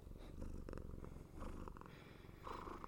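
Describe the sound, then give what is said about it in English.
A cat purrs steadily and close up, a continuous rumbling drone with rhythmic pulses and occasional brighter chirpy overtones, no voices present. “What's it like being a cat? Is it pretty good?”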